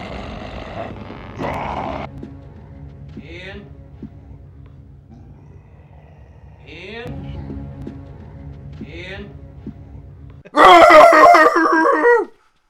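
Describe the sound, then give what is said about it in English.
A man's voice makes low groaning, growling sounds, then bursts into a loud, strained, drawn-out roar near the end, a vocal imitation of a werewolf-like transformation. “man, are you okay up there? I'm like, oh my God, he's turning into a fucking wolf man.”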